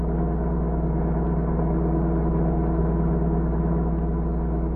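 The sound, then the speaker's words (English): A car engine hums steadily at a constant speed while driving, the car unable to go faster than 40 miles an hour and its motor not running well, a low continuous rumble with a droning tone and no voices, as if heard from inside the moving vehicle. “You mean this car won't go faster than 40 miles an hour?”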